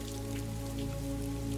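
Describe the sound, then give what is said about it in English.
Faint, light rain easing off almost to a drizzle, pattering steadily with scattered small drops over a constant low hum in the background; no one speaks. “There's less and less rain. It's subsiding even more. And it goes almost down to a drizzle.”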